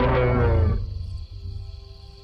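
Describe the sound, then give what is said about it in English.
A single enormous roar from a huge, furry creature running off into a forest erupts loud, deep and guttural, then drops away after a moment into a low, lingering rumble. No one speaks. “you see a huge, furry, silhouetted figure leap over top of your wagon and run off into the forest, followed by an enormous roar as you lose consciousness.”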